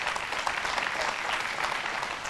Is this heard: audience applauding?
yes